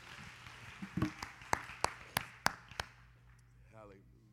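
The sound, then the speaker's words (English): A church audience claps in praise to the Lord while seated: about six sharp, loud hand claps spaced roughly a third of a second apart over a low steady hum, followed by a brief voice at the end. “Why don't you give the Lord a hand and clap of praise as you are seated.”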